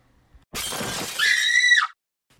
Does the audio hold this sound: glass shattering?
yes